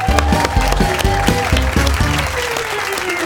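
Steady, loud audience applause fills the whole stretch, mixed with upbeat walk-on music carrying a sustained melody over a pulsing bass beat, with no one speaking.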